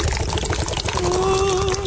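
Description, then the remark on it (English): A steady stream of foamy beer pours from a tap, splashing broadly at first, then taking on a rising, ringing pitch as a container fills. “You just open the tap. This is different. It's all foamy, my water.”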